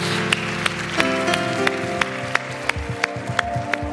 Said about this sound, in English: Can we give these four individuals that raised their hand a huge round of applause? Yeah.